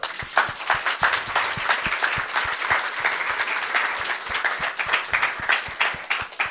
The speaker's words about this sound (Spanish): 3 months. 3 months. Un aplauso.